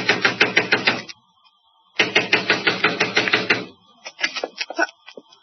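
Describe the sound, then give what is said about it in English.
A fist pounds hard and fast on the front door of Mrs. Larson's house in two long, loud bursts separated by a short pause, followed by a few scattered, lighter knocks. No one speaks. “I ran to the front door and began pounding.”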